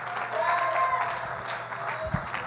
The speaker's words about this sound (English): Somebody clap your hands unto the Lord this morning.